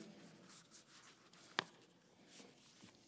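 Paper being folded into a paper airplane: soft, scratchy rustling and sliding, broken midway by one sharp crisp crease. Quiet overall, with no voices.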